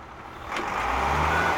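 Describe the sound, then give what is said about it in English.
Steady city traffic rumble with a heavy garbage truck engine idling, its low drone swelling after a brief hiss; a faint high tone, like a reversing beep, rides over the din. “We've got traffic, garbage trucks, car alarms, and arguing neighbors.”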